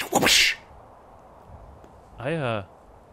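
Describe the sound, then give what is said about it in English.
A voice imitates a whip crack with a sharp, hissing burst, followed after a pause by a short voiced sweep that wavers in pitch. “It'd be whips. Not lava whip. Like an actual Indiana frickin' Jones whip.”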